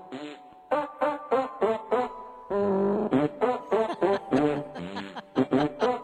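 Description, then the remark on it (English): The Christmas tune Jingle Bells played with farting sounds: a rhythmic string of buzzy, tonal blasts rising and falling in pitch, with one longer held note midway, fairly loud and without talking. “I like the farts.”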